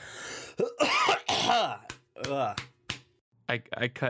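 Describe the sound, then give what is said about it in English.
A series of throaty coughs and rough throat clearing, several harsh bursts separated by short pauses, loud with no talking. “I cut to your coughing again.”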